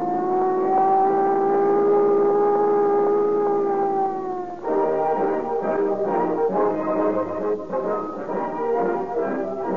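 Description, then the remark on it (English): A loud, steady droning tone holds for a few seconds, then gives way to the rough, fluctuating engine of a Buick touring car revving hard and pulling away as bank robbery suspects escape, continuous with no voices. “Suspects escape in a Buick touring car.”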